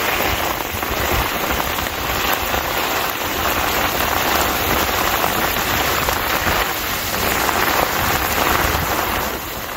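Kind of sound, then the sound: nature, heavy rain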